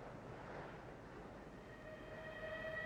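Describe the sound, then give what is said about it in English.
A train rolls steadily along a railway line in a valley below the hills, near a town, heading to Beckton, with a continuous low rumble, and thin metallic squeals from the wheels rise near the end. No one speaks. “Look, there's a train running along the railway line down there.”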